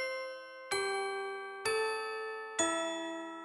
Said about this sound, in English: we're going to hear … version of it right now. This is … on In the Country